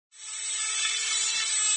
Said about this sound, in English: Okay, I'll start drilling. What sound will you hear if your dentist is drilling? You're gonna hear this sound.